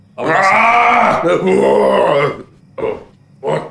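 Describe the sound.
A person imitates the Hulk's roar, as in Iron Man, to wake someone up, with one long, loud, throaty bellow lasting about two seconds, followed by two short, gruff grunts.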